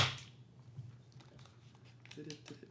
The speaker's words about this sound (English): That's the clap. That's the clap.